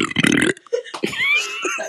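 A loud, close-up burp rumbles for about half a second right into the microphone, followed by a short pause and some softer vocal sounds.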